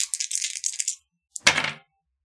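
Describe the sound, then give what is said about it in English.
Two stone dice and plastic dice rattle in a hand for about a second with bright clicking, then after a short pause clatter sharply onto a hard surface, tumbling briefly before settling, rolled for radiant and bludgeoning damage. Fairly loud, no voices. “That'll be the 2 stone dice. The plastic will be bludgeoning.”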